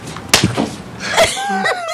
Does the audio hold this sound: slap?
yes